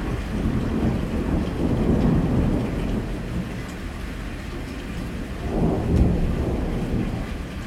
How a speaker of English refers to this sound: We also experienced an almighty downpour and thunderstorm.